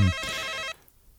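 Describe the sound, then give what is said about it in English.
Susie's mobile phone, left behind, rings with a bright, electronic ringtone, one loud burst lasting under a second before cutting off abruptly into quiet background noise. “I think Susie's left her phone behind.”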